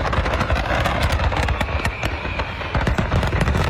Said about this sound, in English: Wow, look at just the sheer amount of smoke, and you can hear it. It all blew up. All of those fireworks going off at once.